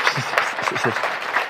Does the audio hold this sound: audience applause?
yes